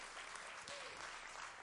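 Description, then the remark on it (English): Sustained applause from a large church audience clapping for the greeters and ushers, a dense wash of clapping hands that stays steady and fairly loud throughout, with faint voices mixed underneath. “Yeah, y'all clap it up.”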